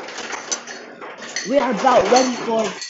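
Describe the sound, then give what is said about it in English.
Someone gets a glass of water: soft clinks and clatter of dishes and glassware over a steady hiss, with a voice talking through the second half. “Here, let me get a glass of water so I can savor the moment of this moment.”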